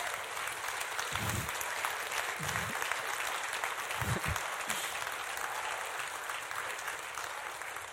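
A standing church audience claps steadily for several seconds for a first-time preacher, a dense, even wash of applause with a few low thumps and shuffles beneath, no one speaking.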